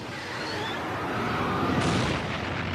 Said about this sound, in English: This reconstruction shows how a US Air Force plane crashed into a B-52 bomber while trying to refuel it.